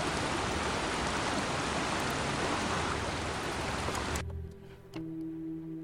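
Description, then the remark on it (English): A loud, steady roar of a waterfall pouring into a stream runs continuously for about four seconds, then cuts off abruptly, leaving a quieter, low droning hum. “So there's a waterfall that dumps out that stream.”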